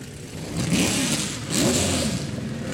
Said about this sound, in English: That is the Glickenhaus that you can hear revving right there. You can hear those turbos spooling away as well.